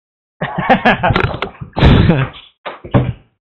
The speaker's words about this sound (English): Alright, well, I gotta close this door.